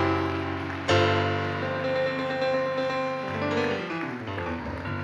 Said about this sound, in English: Can we give him a big hand clap?